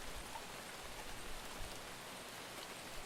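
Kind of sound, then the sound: nature, rain falling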